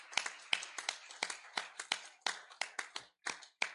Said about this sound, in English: God is good. And all the time, let's give him one more hand clap of praise this afternoon.